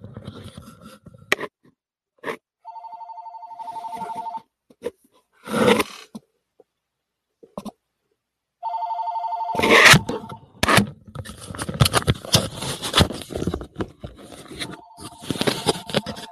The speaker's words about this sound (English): Sorry about that, the phone's ringing, it's the wrong number.